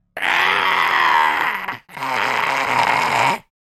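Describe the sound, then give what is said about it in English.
A voice imitates a harpy screeching from the sky: two long, harsh, raspy shrieks, each about a second and a half, loud and strained with a brief gap between them. “You guys hear a screeching from the sky.”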